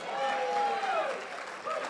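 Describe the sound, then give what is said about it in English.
An audience at a church service claps in a dense, steady wash of applause, with sustained voices calling out over the clapping. “Clap because you really love him.”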